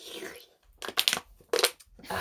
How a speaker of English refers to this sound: Tears. That's what you've been hearing is our water bottles full of tears. Yes, fresh tears.